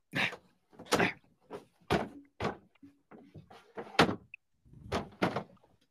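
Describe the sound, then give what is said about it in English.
Irregular clatter of a doggy door flap as a person squeezes through it, with repeated thumps, knocks and rustling scrapes over several seconds. “Wait, you got through the doggy door?”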